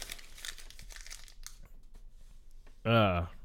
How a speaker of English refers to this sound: yeah, there you go. Chew up the paper. That's going to make great audio. That's just not the book. Don't chew up the book.